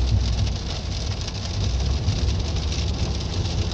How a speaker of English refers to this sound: Now it's raining.